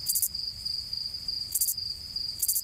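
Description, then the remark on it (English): A Texas field cricket chirps in three short, bright bursts spaced a second or so apart, over a steady high insect drone, with no voices. “Here's a recording of a chirp sequence from a Texas field cricket who kept sneaking under the lead researcher's loafers.”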